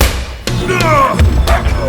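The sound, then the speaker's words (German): In a hotel lobby, a man kicks a football hard: a sharp, solid thump, then a short strained vocal cry and a second dull impact as the ball smacks into another man's head and he goes down, over a low rumbling background. “Satter Kopfball! … ist zu Boden gegangen!”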